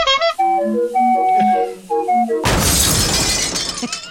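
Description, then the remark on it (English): A jaunty, circus-style tune plays for a couple of seconds, then is abruptly cut off by a loud crash of a clown car into a wall, with shattering glass that rattles on to the end. “The clown car just crashing into a wall.”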